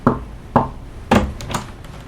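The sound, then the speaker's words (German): Three firm knocks on a door, evenly spaced about half a second apart, each a dull thud with a short ring, followed by a couple of fainter taps. No voices. “Klopfen Sie dreimal, dann kommen Sie rein.”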